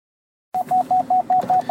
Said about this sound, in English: Hey, we're back on, guys, with my lovely beeping sound. I know you love that.